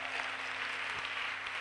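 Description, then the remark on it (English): An audience claps together, a dense and steady wash of many hands at a constant level throughout, with no voices and a faint low hum beneath the applause. “I thought you were clapping for Jesus.”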